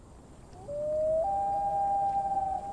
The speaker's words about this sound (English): loon has a beautiful call. Yeah. We'll hear it right now.